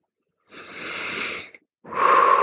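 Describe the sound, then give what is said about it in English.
Two long, deep breaths: a slow, airy inhale of about a second, a brief pause, then a breathy exhale with a faint whistling edge. No talking. “And add the breathing.”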